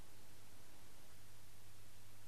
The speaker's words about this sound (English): Sound guys, there's a hum, there's a hiss that has been around for